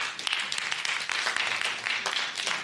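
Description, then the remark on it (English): A crowd claps for themselves in a steady, dense burst of applause that stays loud throughout, with many overlapping hand claps and a few faint voices mixed in. “I think you should clap for yourself.”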